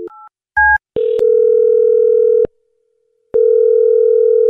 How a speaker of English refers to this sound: All right, well, I'm going to dial her phone number right now and see if we can figure out why she's not getting back to you, okay?